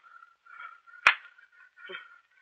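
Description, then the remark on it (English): A single sharp, loud slap across someone's face cracks out, a quick smack against skin standing alone over a faint, low background murmur, with a couple of soft rustles afterward. “If I have to slap it out of you.”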